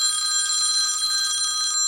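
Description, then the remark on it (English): An old-fashioned telephone, like one from about 1960, rings in one loud, continuous burst of rapid metallic trilling, cutting off just before the end. No one speaks. “Phone's ringing. When did we put a phone in here? Not a new one either. Like one from like 1960.”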